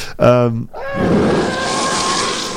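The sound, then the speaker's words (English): A loud, harsh creature cry sound effect made by combining different animal noises, such as a lion or tiger screaming with a seal barking: a short, tonal wail followed by a long, rough, sustained roaring screech with a raspy, growling texture. “Apparently, a lot of these sound effects were actually made by combining different animal noises.”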